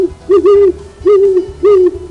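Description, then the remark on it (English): An owl hoots three times in a slow, steady rhythm, each low, rounded call clear, with a faint low hum beneath and no talking. “We got some owls.”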